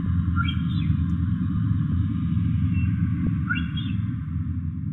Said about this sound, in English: And finally the whistle of the odontocetes, the orcas, moving around quite a bit in the south.